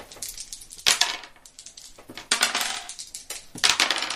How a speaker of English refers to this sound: So everyone roll 2 dice, once for yourself and once for your monster, except you.